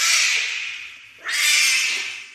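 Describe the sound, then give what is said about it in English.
A young liger's roar (a lion-tiger hybrid): two loud, raspy, high-pitched yowls, the second following a brief dip right after the first, like an oversized cat's caterwaul, with no talking. “And after hearing that roar, how could you blame him?”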